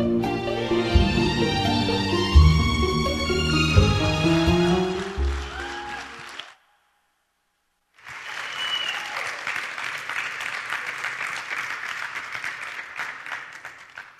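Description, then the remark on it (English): A sung vocal line with sustained, tuneful notes ends, and after a brief silence an audience breaks into steady, dense applause that carries on to the end. “They're actually clapping for the lyrics.”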